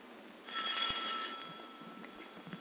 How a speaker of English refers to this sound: It is now early next morning, however, and Penny's doorbell rings.